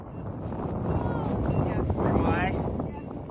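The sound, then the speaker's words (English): Wind howls across an open field outside Kyiv, Ukraine, in cold weather, in a steady, loud, rushing roar with gusty buffeting, and faint voices of a small group of students bundled up in heavy parkas, snow pants and boots are partly buried beneath it. “They're all bundled up against the cold in heavy parkas and snow pants and boots. The wind is howling.”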